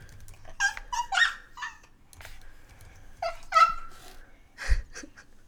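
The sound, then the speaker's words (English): A child's voice imitates a dog barking, producing a few short, high yipping barks in two quick bursts with a pause between, moderately loud. “What sound does it? You're a dog.”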